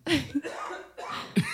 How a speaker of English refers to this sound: Cough at the end. It's such a weird little detail.